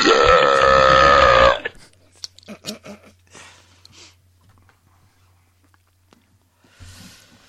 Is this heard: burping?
yes